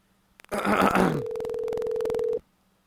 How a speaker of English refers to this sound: This is me closing my phone with one hand.